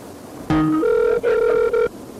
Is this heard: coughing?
no